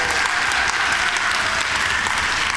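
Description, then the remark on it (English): Steady applause from an audience, many hands clapping at once in a dense, continuous wash of sound that holds at an even, fairly loud level throughout, after a speaker announces he is staying at his church. “Thank you guys for clapping.”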